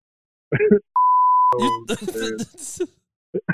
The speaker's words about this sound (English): No, it's gonna sound weird because you have to beep it.